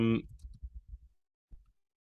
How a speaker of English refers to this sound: Yeah, sorry, I was just typing something in. I just wanted to make sure I got it right here.